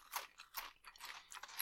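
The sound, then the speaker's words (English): Crisp crunching of Flamin' Hot tortilla chips being chewed, a steady run of five or so brittle bursts at a soft volume, with no talking. “I think it's because we've been munching on all these Flamin' Hot ones.”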